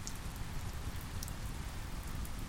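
Steady rain patters down continuously, a dense, even hiss with a low rumbling undertone and scattered brighter drips, no voices present.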